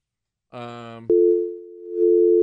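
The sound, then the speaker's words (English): A brief buzzy, harmonic burst gives way to a loud, steady electronic telephone busy signal that drones on without pause, briefly dipping then swelling again, with no voices present. “I don't know why is it so hard to get him on the goddamn phone.”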